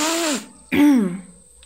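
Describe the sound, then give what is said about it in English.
Two exaggerated, theatrical voiced sniffs, the first drawn out and the second a sharper snort after a short pause, with no talking around them. “… sniffs rather theatrically.”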